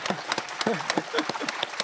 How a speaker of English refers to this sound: our final speaker, if you could give him a round of applause.